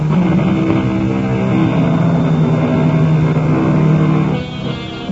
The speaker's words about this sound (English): The helicopter hovers over the nightmare landscape. It is an eerie, ghostly country of jagged and rocky hills, deep and narrow ravines, completely devoid of any softening traces of vegetation.